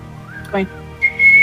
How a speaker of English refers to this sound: I'm going to put my fingers into my mouth and do a loud whistle to call my friend over.